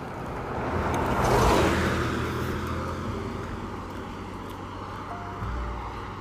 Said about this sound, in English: I'm waiting for this car to go by.